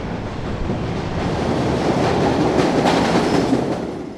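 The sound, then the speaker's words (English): A subway train rolls slowly into a station, pushing wind ahead of it, with a broad, roaring wash of noise that swells steadily louder and peaks at about 96 to 97 on a sound level meter. Faint rail clatter, and no voices are heard. “Here comes the train.”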